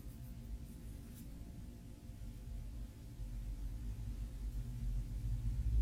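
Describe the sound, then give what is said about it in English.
A low, steady rumble of traffic hums on its own, with no voices, growing slightly louder and fuller toward the end. “Hear the sound of traffic.”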